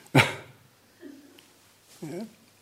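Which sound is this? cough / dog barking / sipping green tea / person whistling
dog barking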